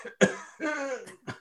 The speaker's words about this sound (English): I'm coughing.